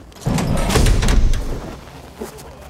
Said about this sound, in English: So you should hear a pretty loud rush of air when they open this door.